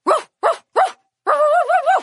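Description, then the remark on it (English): A zebra gives three quick, sharp barks in a row, then a longer, wavering yelping call, loud with no other sounds around it. “The sound of zebra is just like puppy barking.”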